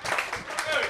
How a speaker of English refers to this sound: I gotta tell y'all, I am super into inauthentic clapping, so you could clap some more.